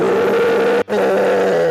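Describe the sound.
A person gives a loud, growling imitation of a bear's roar, two rough, sustained bursts split by a brief pause, with no other talking.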